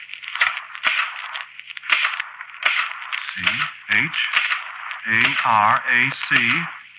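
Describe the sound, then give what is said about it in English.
Scattered sharp typewriter key strikes from a typewriter typing by itself clack at an irregular, unhurried pace over a hissy, narrow-band old-radio background, with a man's voice speaking briefly in the second half. “Look, I said I didn't write it, and the typewriter just said, no, I did.”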